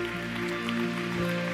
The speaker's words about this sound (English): So if you have signed up to be baptized, I believe there's seven of you. If you would come join us up front up here, you, your parents, your family members, whoever you want to bring. Can we give these folks a round of applause as they come up here?